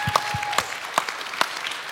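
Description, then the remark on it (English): A church audience claps together in steady, dense applause, celebrating that the church made its expenses this year, with a few sharper, louder claps popping out above the wash of hand noise; no one speaks. “30 days ago, they were like, "Hey, yeah, let's applaud. Let's applaud."”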